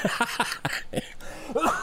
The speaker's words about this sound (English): I've muted so many times for my cough tonight. Sorry about that, guys.